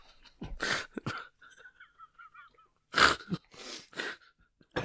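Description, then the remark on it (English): Harsh coughing in two clusters, caused by a tickle in the throat from a bit of Dorito chip: a couple of raspy bursts, a pause filled with faint wheezy breathing, then three or four more hacking coughs in quick succession. “It's tickling my throat and it won't go away. It's a cough.”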